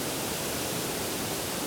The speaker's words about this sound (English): I'm just going to take a moment from chatting about this to stop and have a look at the bottom waterfall.